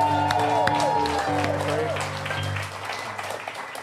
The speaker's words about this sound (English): I'm not mean. You are. You're screaming over a crowd. I'm just loud.